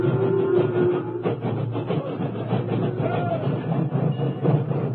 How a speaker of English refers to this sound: The doors were closed, and then, at sunset, an engine backed into position.